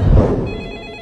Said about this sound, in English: I know it's the phone, Ma. I hear the phone!